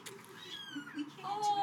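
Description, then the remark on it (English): Several thin, high-pitched kitten meows rise and fall in quick succession, overlapping one another at moderate volume, with faint murmuring in the background. “Oh, these are talkers, boy. Yeah. These are big talker kittens.”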